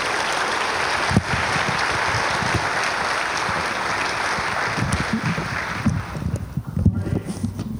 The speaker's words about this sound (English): Won't you give him a round of applause, a warm greeting?